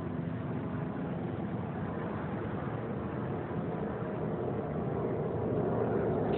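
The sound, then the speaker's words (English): A steady, broad engine roar of several planes passing overhead above houses at 9:49 p.m. on December 27th, continuous and fairly loud, swelling slightly toward the end, with no voices. “In addition to the planes that are flying at a higher elevation, as I look at them above the houses that I stand in front of, and as I started documenting, now they are flying over audibly.”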